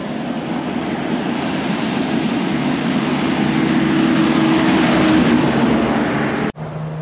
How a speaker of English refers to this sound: It looks like a fire truck is trying to follow that car. Here it comes.